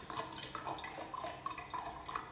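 Water trickles and splashes into a big drinking glass, a steady liquid wash dotted with small bright plinks and bubbling drips throughout, with no voices.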